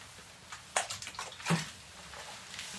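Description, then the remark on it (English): Tap water sloshes in a glass or container as someone drinks it, with two sharper splashy bursts among softer gurgles, then a quiet trailing end. No talking. “This lad's running for president of Ireland and he's drinking dirty water.”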